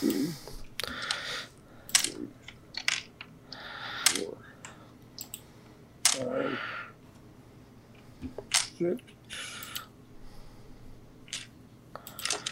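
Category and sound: dice being rolled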